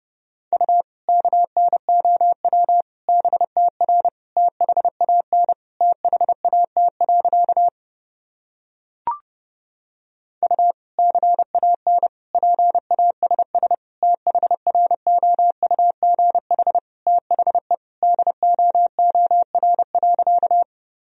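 Fast Morse code sent at 30 words per minute, keyed on a single steady mid-pitched tone, clipped dots and dashes in rapid bursts, broken once by a short pause with a faint click, then resuming at the same pace.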